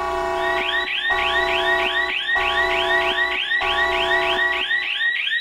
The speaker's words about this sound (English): That's our disclaimer alarm going off there for everyone. Just a nice warning siren to let you know that this is a satire show.